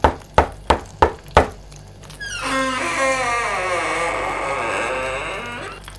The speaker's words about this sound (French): Lundi, pendant qu'elle cuisinait, une fille toqua à la porte.